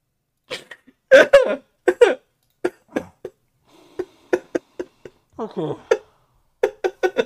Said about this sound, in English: All I heard was a choking noise.